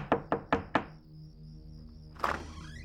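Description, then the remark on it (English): Four quick, firm knocks on a wooden door in an even rhythm, then a pause before a softer scrape as the door is opened; a policeman is at Walter Liggett's door on June 23, 1935. No voices are heard. “Almost exactly 7 months later, on June 23, 1935, Walter Liggett answered the door to find a policeman standing there.”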